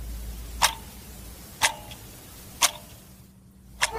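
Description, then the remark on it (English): A clock ticks steadily, about once per second, with four crisp, sharp clicks over a faint low hum. The ticks are moderately quiet, with no voices present. “A clock ticking?”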